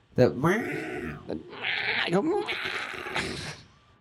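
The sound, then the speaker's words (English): A person loudly imitates a cat's screech while first stretching in the morning, similar to the cat Mary: a strained yowl that rises and breaks into several harsh, drawn-out cries over a few seconds. “Like when I first stretch, I do like an incredibly loud, like very similar to Mary, like screech.”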